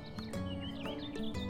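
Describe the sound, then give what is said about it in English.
Birds singing in quick, high, swooping chirps and whistles that rise and fall over a steady low hum, with no voices heard. “Coco, the birds are singing.”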